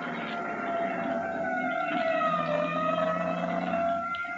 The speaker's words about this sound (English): Nonsense. That siren is clearing the way for it. Let them get by. That's the salvage squad.